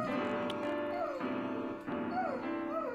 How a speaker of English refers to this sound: Isn't this the second time we've had like a dog that's tried to pretend he can sing?